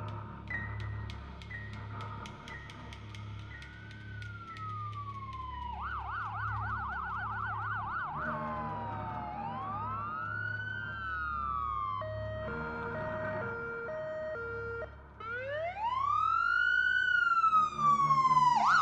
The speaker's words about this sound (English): The sound of approaching sirens can be heard, and again, I optimistically hope the shrill will bring me back from whatever this is.